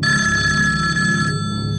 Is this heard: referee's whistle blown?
no